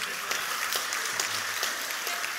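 A crowd of people clapping together in a steady, dense wash of applause, with scattered sharper claps standing out, sustained throughout and with no voices.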